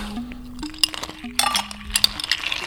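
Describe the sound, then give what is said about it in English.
Ice cubes clink and rattle into a glass of vinegar syrup (sugar, water and vinegar, cooked) with added water, in a quick irregular cluster of bright, sharp taps, with a steady low hum running underneath. “Add some water in it. Some ice.”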